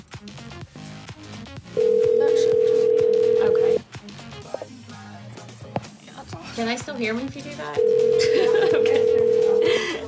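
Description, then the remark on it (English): An outgoing phone call to a woman's phone rings out: two long, steady ringback tones about two seconds each, separated by a pause, loud and clear over background voices and chatter. “Wait, was that her phone that I just rang?”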